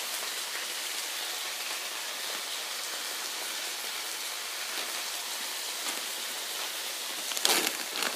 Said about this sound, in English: All right, now your fried rice mixture is ready. And now all you have to do is get to the most important part, fry your rice. it's not really frying, you're really just sauteing it.